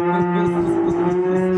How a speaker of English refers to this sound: this is … theme song. It starts with a fucking moo.